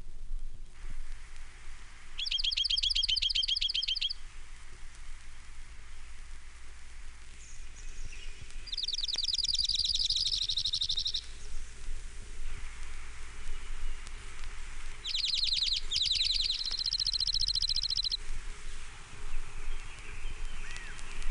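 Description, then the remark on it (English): Junco song: a dry, even, high-pitched trill repeated about four times, each lasting a second or two, with two phrases running back to back, over steady hissing background noise. “Junko. Nine examples.”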